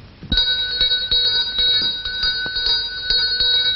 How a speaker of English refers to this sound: Later, the bell pull is tugged.